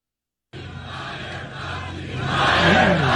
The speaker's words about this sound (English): The crowd starts to chant, and then Trump just can't help himself because he's an honest guy. Listen to this.